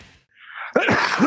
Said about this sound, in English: Way to fucking sneeze as soon as we start recording, dick. And we are back. I didn't sneeze. What was that? I coughed. Oh, shit, that was intense.